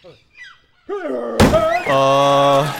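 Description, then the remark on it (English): A single heavy thunk, like a knock on a door, lands sharply midway, with a voice-like hum before it and a sustained tonal vocal sound after. “Is that a knock?”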